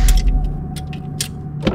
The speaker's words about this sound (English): I opened the door and stepped out.